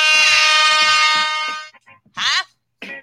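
A single loud air horn blast holds one steady, brassy pitch for under two seconds, then cuts off. A couple of short vocal outbursts follow.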